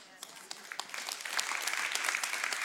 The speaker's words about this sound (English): Half the people clap, and half the people are like, I don't know if I agree.